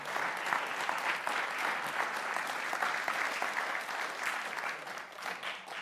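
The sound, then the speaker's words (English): A crowd gives God a strong hand clap, applauding steadily for several seconds, a dense wash of many hands clapping at an even loudness with no voices standing out. “I want you to give God a strong hand clap for that.”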